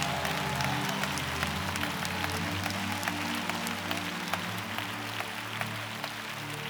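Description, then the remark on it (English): A church audience claps steadily together during an altar call, a dense, continuous patter of many hands, with low sustained music tones running underneath throughout. “I need y'all clapping.”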